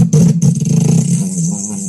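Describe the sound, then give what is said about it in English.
A brief, buzzing rumble like a motorcycle revving, loud, with a strong low drone and rattling texture that wavers for about two seconds before easing off. “That sounded like a motorcycle, not a fart.”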